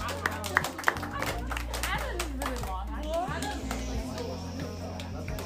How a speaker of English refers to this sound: Great. Yeah, give yourselves a round of applause, grade eights.